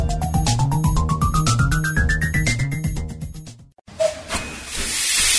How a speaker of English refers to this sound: Enjoy a narrow gauge steam ride. No need to book, just turn up and take the next train. Bring a picnic and watch the steam locomotives go by.